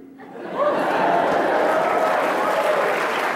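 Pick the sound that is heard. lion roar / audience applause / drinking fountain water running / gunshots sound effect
audience applause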